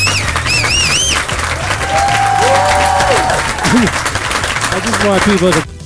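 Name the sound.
audience applause and cheering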